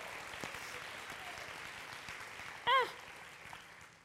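Audience applause, a steady crackling patter of many hands clapping throughout, with a brief, loud, high-pitched whistle-like cry rising over it just past the middle.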